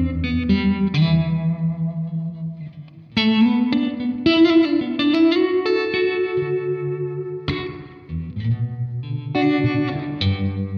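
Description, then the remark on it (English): An electric guitar played through a tremolo pedal into a '65-style reverb pedal plays sustained chords and ringing single notes drenched in spring-style reverb, with a bright, splashy tail and slight modulated shimmer, loud and continuous with no talking. “Going to 65 reverb.”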